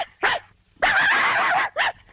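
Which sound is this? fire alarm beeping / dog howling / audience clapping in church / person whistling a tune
dog howling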